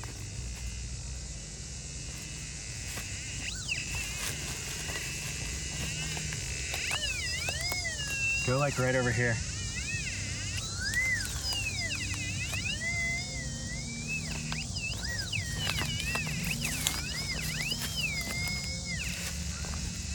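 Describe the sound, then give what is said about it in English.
Warbling electronic tones from a metal detector registering hits on a buried target rise and fall in pitch in repeated bursts over a steady rushing background, with a brief exchange of speech partway through. “So tell us about those different tones we were hearing”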